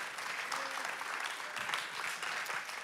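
Sustained applause from a large audience at ICF Zurich church for an intern from Germany coming to the stage, a dense, steady wash of clapping with no voices standing out above it.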